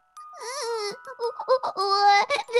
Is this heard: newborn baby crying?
yes